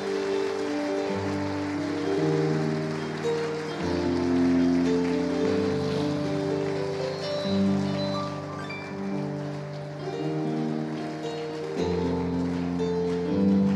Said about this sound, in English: Let's give Jesus a bigger and a better hand clap.